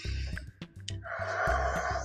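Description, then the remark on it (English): A slow, deep breath drawn in and then let out in a long, airy exhale over a low steady hum, with no talking. “Take a deep breath in and out.”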